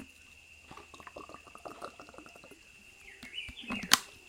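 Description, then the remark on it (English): Someone takes a sip of water during a video call, with soft wet slurping and swallowing sounds followed by a sharper knock near the end, probably the glass being set down. No one speaks. “Actually, I'm going to have another sip of water.”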